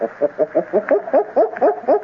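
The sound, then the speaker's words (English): A person imitates gorilla barking with a rapid run of about eight short, hooting vocal barks, evenly paced and fairly loud, each with a rough low-to-mid pitch, with no other speech. “We must sound like them. Their barking is like this.”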